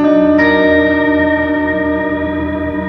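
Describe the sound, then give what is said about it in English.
A sustained guitar chord rings out through a reverb pedal with modulation, drenched in heavy reverb whose wash gently wavers and shimmers as it slowly decays; the wavering is in the reverb, not tremolo. Loud and steady, with no voices. “That's not the tremolo, that's all just in the reverb.”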